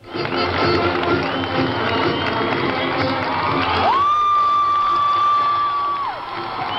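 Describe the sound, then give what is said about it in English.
Crowds filling the streets of Vancouver cheer and shout steadily as Rick Hansen ends his Man in Motion marathon around the world, a dense wall of voices, with a long high whistle-like tone rising and holding through the second half. “Today, with cheering crowds filling the streets of Vancouver, Hansen finally ended his Man in Motion marathon.”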